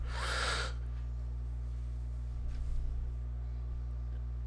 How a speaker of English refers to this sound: Ooh. That was a big yawn. Yeah, it was.